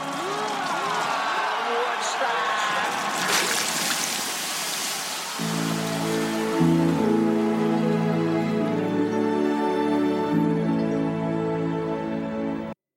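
A loud rush of splashing, hissing water from a bottle douses a fire for several seconds, then a sustained, wavering vocal groan rises and holds over the fading fizz.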